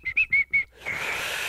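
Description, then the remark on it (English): A short whistled phrase of Dixie, four clear mid-high notes in a quick rhythm, followed by a steady breathy hiss of air with no tone. “Do you want me to whistle Dixie or just lips, a straight?”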